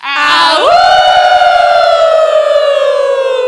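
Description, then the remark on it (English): A group of people at a live event howl together like wolves as a team, voices swooping up in pitch and then holding a long, loud, slowly sinking howl for about three seconds. “What's going to happen is that we're going to wolf howl out all together as a team.”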